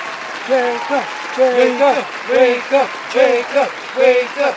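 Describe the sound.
Steady applause from a crowd, a dense wash of clapping that holds for several seconds, with voices cheering over it in bursts.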